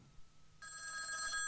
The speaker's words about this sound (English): So here's the deal, though. If that phone was to start ringing.